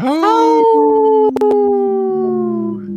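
A single long wolf howl rises quickly, then holds and slowly slides downward for about three seconds, loud with no talking, broken by a couple of brief clicks midway.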